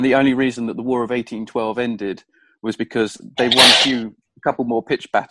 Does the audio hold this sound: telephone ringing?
no